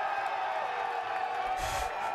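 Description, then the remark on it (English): A crowd cheers and applauds to welcome a guest, in a steady, continuous wash of noise at moderate loudness, with a brief swell near the end and no clear talking over it. “What do you guys in the crowd say?”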